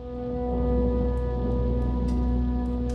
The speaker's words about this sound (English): Marisank shivered with fear as the rain poured down outside.